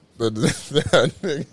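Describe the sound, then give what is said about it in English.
A man's voice imitates a dog barking, four loud bursts in quick succession with rising and falling pitch, each one short and throaty. “And then he did the, like, dog shit.”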